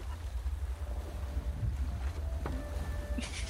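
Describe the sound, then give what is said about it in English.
Steady, blustery wind roars around a boat, with a deep low rumble, faint creaking tones and a brief rush of spray near the end, with no voices. “I made the boat safer in the storm, so...”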